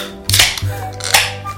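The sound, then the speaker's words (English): Two beer cans cracked open one after another, each a sharp snap followed by a short fizzing hiss, over a steady low hum with no talking. “We'll just have to pop these open and see what happens here.”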